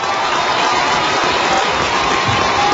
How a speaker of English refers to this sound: And the crowd erupts in celebration.